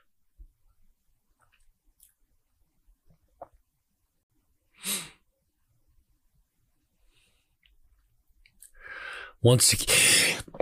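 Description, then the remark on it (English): A brief breathy snort-like burst, then after a pause a rising sharp inhale that ends in one loud, harsh sneeze from a wrestling commentator during a match broadcast, filling the final second, over an otherwise quiet background. “Sorry for the sneeze there, Bruiser Nation.”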